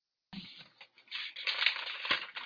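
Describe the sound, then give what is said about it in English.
Paper sheets are flipped and rattled in a burst of crisp, crackling rustles, starting with a sharp flick and swelling unevenly for about two seconds, with no voices. “always flips and rattles his paper over”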